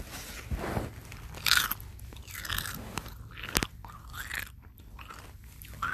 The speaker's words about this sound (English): These chips are really good. And crunchy.